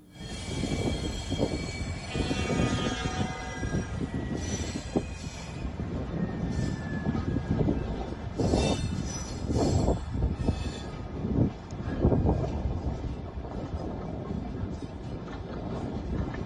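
A train carrying mounted military assets rolls steadily along the rails in central Russia, a continuous heavy rumble with rhythmic clatter and faint metallic squeals, lasting throughout with no one speaking.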